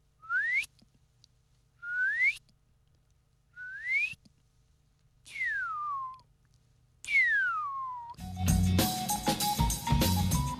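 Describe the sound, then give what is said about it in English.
A person whistles an imitation of a Shining Cuckoo: five spaced, clear notes, the first three sweeping sharply upward, the last two sliding downward, before a loud burst of other sound. “But anyway, the Shining Cuckoo, I'll do my best.”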